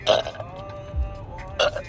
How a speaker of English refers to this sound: Damn, these are just drunk burps at this point.